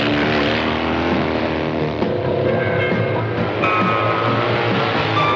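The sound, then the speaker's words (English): A big motorbike engine in Sandy Harbutt's 1974 biker movie Stone roars loudly and continuously, its rumbling tone shifting pitch as it revs, with no voices present. “And when you're on a bike, I mean a big bike, you've got all power, man.”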